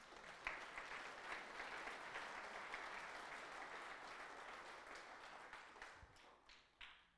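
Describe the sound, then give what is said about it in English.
A church audience breaks into sustained, steady applause for a Bible verse, a dense wash of many hands clapping for several seconds before it thins out into a few scattered final claps. “Can we just clap for that one?”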